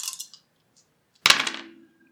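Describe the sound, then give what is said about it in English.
A quick clatter of small hard objects, then a sharper louder clack with a brief ringing tail, as three dice are rolled onto a table for an armor roll in a game; no voices. “Your armor is three dice. Yep. So roll three dice.”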